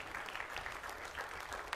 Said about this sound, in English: If you found that, would you give him a good hand of applause this morning?